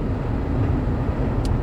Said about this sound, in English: I'm in the car right now, Dad.